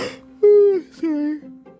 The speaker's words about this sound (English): Sorry. I keep yawning, like always.